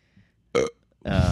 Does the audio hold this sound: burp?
yes